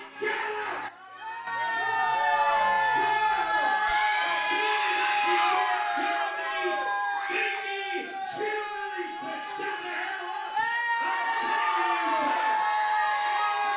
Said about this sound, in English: Crowd is so loud, I didn't get to hear him say what his name actually was.